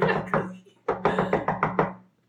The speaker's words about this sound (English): So Jane's gonna come knocking on the lady's door.